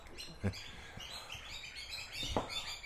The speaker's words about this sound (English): Because what I notice, it's sort of like the bird language, you know, or bird experts say, all that you're hearing right now is territorial. I hear what my Native American elders taught me, celebration.